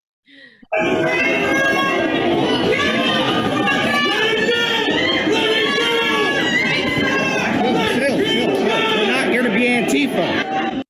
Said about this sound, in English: Now, I don't know if you heard that, but so the crowd is screaming some obscenities, you know, get Antifa out of here and stuff like that.